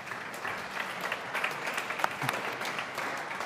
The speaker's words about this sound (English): So can we have a round of applause for all the speakers, please?